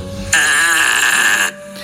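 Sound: fart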